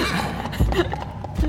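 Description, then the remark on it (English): Someone performs Foley imitating horse hooves clip-clopping, meant as the ringing of crystal hooves beside the exhausted shuffle of a very tired human: a slow, uneven pair of dull low thumps set against a steady breathy, scraping shuffle, moderately loud, with no speech. “So we've got the ringing sound of crystal hooves and then just a really exhausted shuffle.”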